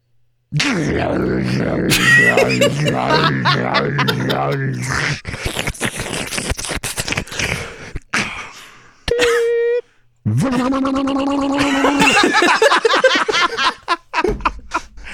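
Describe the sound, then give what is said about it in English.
A person vocally mimics a washing machine with a long run of rumbling, churning mouth noises, sloshing clicks and a couple of steady hummed tones, including a brief high beep-like note. “I'm going to try and do a washing machine too.”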